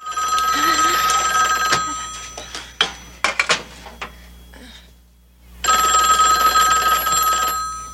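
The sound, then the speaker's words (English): A telephone bell rings loudly in two long, jangling bursts, separated by a brief pause filled with a few sharp clicks and knocks; it is a phone call coming in to an apartment. “We then cut to Linda's apartment, whose father doesn't take a phone call from Arthur very well.”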